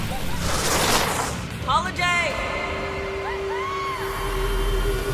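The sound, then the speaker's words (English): An early hoverboard sound effect: a loud, jet-like rushing whoosh swells and fades, followed by rising whistly tones, a steady low hum, and voices calling out over it. “And you can hear early versions of the hoverboard there, which just sounded almost a little more like a jet craft”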